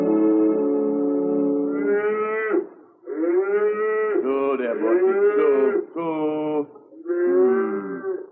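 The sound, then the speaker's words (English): Several northern cows in a meadow moo in overlapping, drawn-out calls, low and loud with rising and falling pitch, one lowing after another with brief pauses between. No talking is heard. “You brung northern cows down here?”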